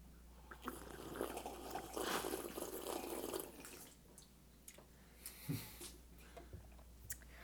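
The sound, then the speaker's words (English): Quiet slurping and sipping of hot coffee in the morning in Orlando, with a drawn-out noisy sip early on followed by a few soft clicks and a light cup clunk. No one speaks. “I think it's time we sip our coffee and tell the people what they came here for.”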